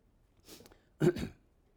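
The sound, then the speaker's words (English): A soft throat-clearing rasp, then a louder, harsher cough-like burst a moment later, with no talking around it. “I think this is a bad thing to have with a cough.”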